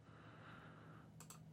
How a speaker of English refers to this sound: Don't mind my mouse clicks.